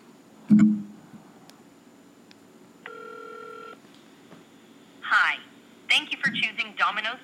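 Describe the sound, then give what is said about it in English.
A dull clunk, then a single steady electronic ring tone heard through a phone line for about a second as a phone call is made, followed by a voice starting to speak over the line. “So let's make this phone call.”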